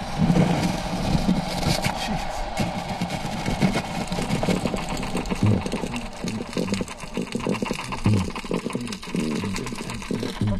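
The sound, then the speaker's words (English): Underwater fish calls recorded by a 3-inch underwater microphone launched from an 18-foot skiff form a dense, buzzing, crackling chorus of drums and croakers, including silver perch cackling like chickens and spotted sea trout, with low booming pulses from black drum repeating at irregular intervals throughout. No one speaks. “The boom, boom is a black drum.”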